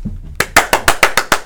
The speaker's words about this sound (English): There we got the motherfucking clap.